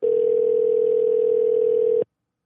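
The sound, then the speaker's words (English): A steady, unbroken landline dial tone hums loudly at a constant pitch for about two seconds, then cuts off abruptly into silence. “Yes, it's a landline.”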